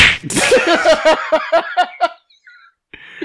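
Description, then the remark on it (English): A sharp, whooshing punch sound effect lands right at the start, followed by a quick run of rhythmic, pitched giggling bursts that fade out, then a faint high tone. “Punch!”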